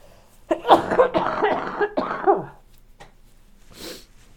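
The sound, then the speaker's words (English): A muffled sneeze with voiced gasps and strained sounds lasting about two seconds, dulled by a sock covering the microphone while the speaker turns away from it, followed by quiet and a short breathy exhale. “Okay, another sneeze.”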